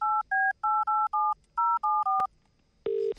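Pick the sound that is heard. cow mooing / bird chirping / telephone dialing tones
telephone dialing tones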